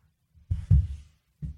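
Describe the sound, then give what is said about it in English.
A computer is shifted across a desk, giving a few dull, low thumps and bumps: two quick knocks close together, a short scraping rumble, then one more thud. No one speaks. “Just moving my computer.”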